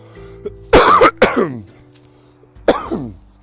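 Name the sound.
dry cough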